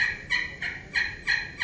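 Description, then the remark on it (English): A slate call produces a steady run of about six muffled, raspy turkey yelps, evenly spaced, with no talking over them. “See, it don't have near the pure sound as it does like this.”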